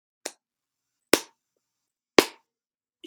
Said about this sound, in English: That's me delivering a slow clap.